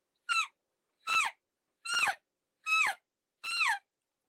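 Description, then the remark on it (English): Five short, high, squealing elk calf calls blown on a reed call, each note sliding downward in pitch, evenly spaced and fairly loud, with silence between them. “Now you got a calf sound.”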